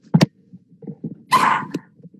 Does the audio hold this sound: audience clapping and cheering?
no